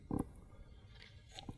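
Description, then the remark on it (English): A quiet, wet gulp of Flying Dog IPA beer being swallowed in a big sip, a short low burst near the start, then a softer second swallow about a second later, with near silence between and no talking. “Sorry, I had to take a big sip.”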